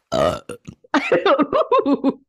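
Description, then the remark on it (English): A loud burp rings out, followed by a quick run of short, croaky voiced bursts, like someone burping out a string of syllables. “We might burp.”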